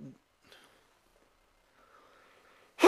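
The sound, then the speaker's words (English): A sudden, loud sneeze, aimed away from the microphone, bursts out at the very end, cut off abruptly, after a few seconds of near silence with only a faint murmur in the background. “I tried to sneeze away from the mic.”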